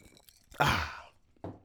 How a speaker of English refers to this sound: I'm pausing while I take a sip out of my red grapefruit and vodka drink. Hold on.